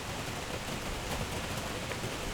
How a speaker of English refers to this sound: So I guess I'll listen to the storm.